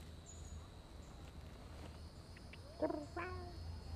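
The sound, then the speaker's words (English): A healthy, well-fed cat lets out a couple of short meows near the end, over a steady low hum and faint background noise, with no talking. “Damn, you eat good. He's a healthy cat.”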